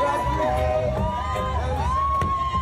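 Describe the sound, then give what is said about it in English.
A crowd of Johnny's rowdy fans cheers and shouts outside court as he arrives, in a steady, loud wash of voices, with rising whoops and sustained calls cutting above the general roar. “And stopping to rally his rowdy fans.”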